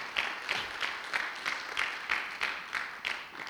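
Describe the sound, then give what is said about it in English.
Audience applause with a steady, almost rhythmic pattern of claps, about three per second, fairly soft and continuing throughout with no voices. “Can we give these guys a big round of applause?”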